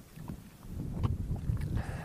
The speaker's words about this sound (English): probably around 12 or 13 degrees at the moment, and you can maybe hear that it's much more of a breeze this morning. But it's clear and dry, and I can see all the mountains over to the west and the peaks in the far distance hazy.